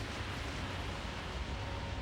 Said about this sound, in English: Look, hear the thunder? I don't know, did you hear that? Well, it might be thunder, but I don't think so.